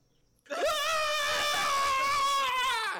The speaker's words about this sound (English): You're screaming a lot, but you're not giving me much detail.